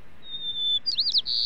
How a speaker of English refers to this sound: Next time a bit of birdsong breaks through the noise in the city to reach your ears, think of the extra grit and ingenuity that bird had to muster to be heard.